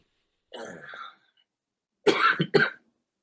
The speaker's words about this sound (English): He drank water and immediately coughed. His body isn't used to it.